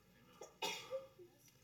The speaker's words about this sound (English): Bless you.